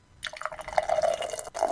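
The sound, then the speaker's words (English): An IPA from a can poured into a glass, a steady gurgle and splash with a faint rising fill tone, briefly breaking off before resuming for a moment. No talking. “You were having a good pour, and then Discord cut it off somehow.”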